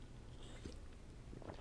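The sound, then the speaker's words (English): A quiet sip from a generic Dr Pepper-style soda, with soft wet mouth sounds and a swallow over a low steady background hum. No one speaks. “Take a little sip of my Dr. Pepper generic version.”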